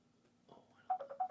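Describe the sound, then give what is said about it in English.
A phone ringtone chimes in a quick run of bright, repeating electronic pulses, clear, following a brief softer rustle with no talking. “Someone's phone, I think.”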